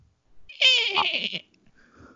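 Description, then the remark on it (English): A person imitates a horse whinny: one shaky, wavering, high-pitched vocal cry lasting under a second, fairly loud, coming out more like a bleat, then a faint breathy trailing sound. “Oh, shit, was that a horse sound?”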